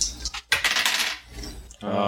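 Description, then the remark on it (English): Dice rattle and clatter onto a surface in a quick burst of sharp clicks, fairly loud, ending with a brief voice at the very end. “Do you want to get those dice rolling? Yeah, I'm going to get some clickety-clack going.”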